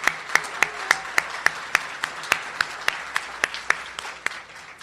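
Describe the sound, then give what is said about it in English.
An audience at the Cannabis Summit applauds sponsor New Frontier Financials over a steady wash of clapping, with one set of sharp claps standing out at an even, quick beat. It fades slightly toward the end, with no voices. “So please give me a round of applause for their support.”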